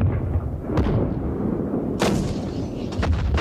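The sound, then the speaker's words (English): A relentless barrage from 983 guns and mortars opening the Battle of Vimy Ridge at 5:30: a deep, continuous rumbling roar punctuated by several sharp, cracking blasts at irregular intervals, loud throughout with no voices. “.983 guns and mortars erupted with an earth-shattering roar.”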